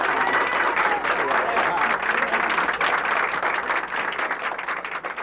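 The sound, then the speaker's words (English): A large crowd reacting to a man's arrival applauds loudly and steadily, a dense wash of clapping mixed with cheers and shouts that continues without pause throughout. “You hear the reaction of the crowd, and he is here.”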